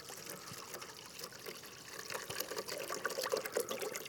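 Bottled water poured into a small recycling container from a hotel room, a steady splashing trickle that grows fuller and louder over a few seconds, with no voices.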